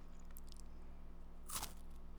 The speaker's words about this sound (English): Like, the chocolate smells really good. So I'm going to bite it close to the mic.